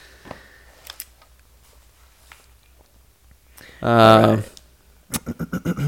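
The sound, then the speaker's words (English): Sparse, crisp clicks of fingers tapping keys on a computer keyboard that is not hooked up to anything, typing nonsense, then a brief voiced sound, followed by a quick run of about six sharp taps. “Yeah, I'm just playing on this keyboard. It's not just even like hooked up tappy, to anything. Tappy, tap, tap, tap.”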